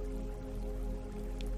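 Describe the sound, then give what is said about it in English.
A steady, gentle trickle of flowing stream water runs continuously at a soft, even level, with faint drips and a low background hum and no voices. “I want you to visualize to the left of you, there's a beautiful stream of living water.”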